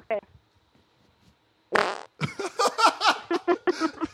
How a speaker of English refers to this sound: Do you want to hear me fart into the microphone?